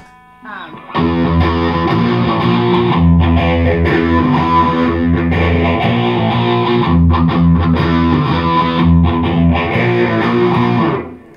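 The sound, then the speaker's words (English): A distorted electric guitar played through phaser, Nightwire and DS1 pedals, playing loud, sustained chords with a thick, buzzing tone and a sweeping, whooshing shimmer that rises and falls over about ten seconds. “Phaser, Nightwire, DS1.”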